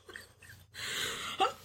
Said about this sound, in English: Yep. Stop coughing. I can't. We're both sick.